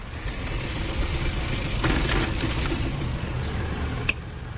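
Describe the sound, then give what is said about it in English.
A car engine rumbles low and steady as the car brakes at a stop sign at an intersection and idles, with a few faint squeaks and a sharp click near the end, no voices. “This one has a stop sign, so I will apply my brakes.”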